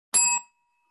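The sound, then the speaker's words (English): A single bright bell strike rings out, sharp at first, then its clear metallic tones linger and fade over a moment. Fairly loud, with no voices. “Must be right if we both hit the bell.”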